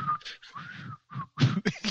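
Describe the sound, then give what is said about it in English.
A thin, breathy whistle holds a steady, slightly wavering tone for about a second, broken by airy puffs, then gives way to louder rushes of breath. “Can you guys whistle?”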